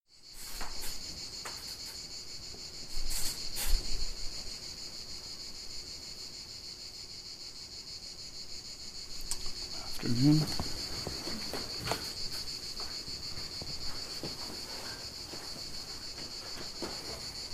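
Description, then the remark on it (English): A steady, high-pitched drone of crickets chirping continuously throughout, moderately loud and unbroken, with a few faint thumps and rustles in the background. “I feel like we should all bow to the crickets.”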